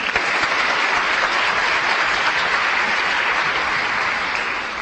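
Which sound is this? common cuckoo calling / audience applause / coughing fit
audience applause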